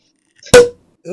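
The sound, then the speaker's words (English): A single sharp champagne cork pop, loud and sudden with a short hollow ring as it fades, preceded by a faint rustle and followed by the start of a voice. “So, you know, I can't wait to drink, so I always have to wait to open my pop champagne.”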